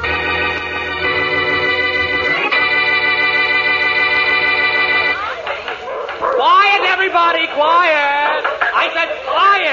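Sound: dogs barking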